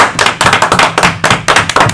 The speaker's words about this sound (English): You only get a short applause for that.